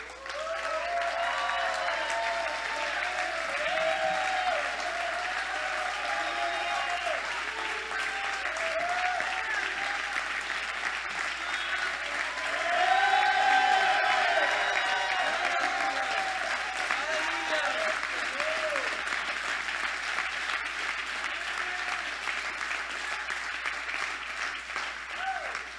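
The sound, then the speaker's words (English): Steady applause from a large crowd, sustained for the whole stretch, with voices cheering and calling out over it and a brief swell of louder cheering partway through, as a family of ministers is called forward. “You were right to applaud Jesus for these kind of servants.”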